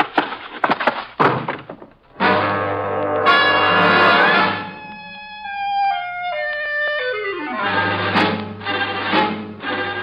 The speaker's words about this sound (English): The sergeant settles gracefully into a pile of blubber and I shut the door behind me.